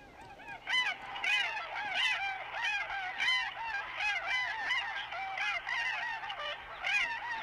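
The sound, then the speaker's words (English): A flock of tundra swans calls continuously, overlapping high-pitched, squeaky honks in a busy chorus, steady with no voices present. “It's like a squeaky Canada goose.”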